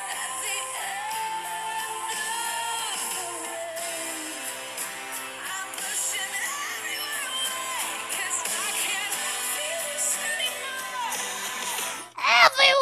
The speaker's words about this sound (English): Hold on. I just want that scream. She has like a scream.